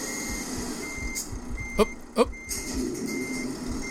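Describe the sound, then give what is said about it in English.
A truck's reversing alarm beeps steadily and fairly loudly over a low engine rumble as the truck reverses out of a garage, with two short sharp clunks midway through. “Now I'm in my truck. Let's reverse out of the garage.”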